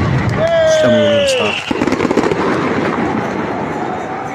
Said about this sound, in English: Yeah, so there's a whole bunch of these this artillery basically going on around everyone.